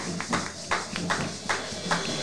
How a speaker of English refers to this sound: Let's put a hand clap on that for the participation.